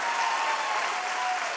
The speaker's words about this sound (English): Come on, can you clap and praise God like you mean it?